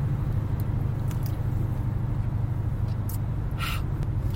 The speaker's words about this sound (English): Let me have a sip of my $4 water I got at the airport.